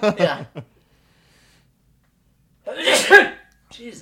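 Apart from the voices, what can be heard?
sneeze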